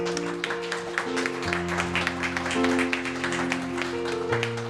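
Steady audience applause for the cast of a show, a dense crackle of many hands clapping, plays over sustained music with long held chords that shift pitch a few times.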